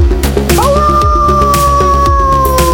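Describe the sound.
A long, drawn-out howl rises and then holds a steady, wavering tone, sounding loud over a rhythmic music backing with a steady beat.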